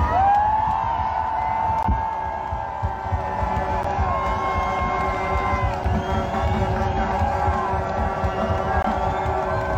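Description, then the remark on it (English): A large crowd applauds and cheers for former Premier Peckford in a loud, continuous roar, with clapping, shouts and whoops blending into a dense wash of noise that holds steady throughout. “Peckford, we're going to give you the biggest applause that we've done yet.”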